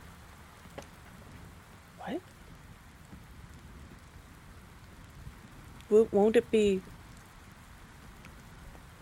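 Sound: rain falling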